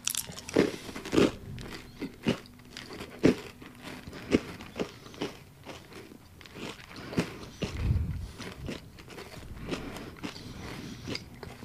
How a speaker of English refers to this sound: Can you hear the crunches, guys? It's definitely a sugar cookie.